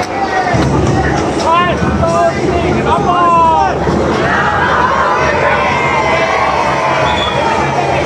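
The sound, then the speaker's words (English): A large crowd cheers and shouts continuously, loud, with overlapping voices, rising whoops and whistles woven through a dense wall of babble. “You hear the crowd? We support!”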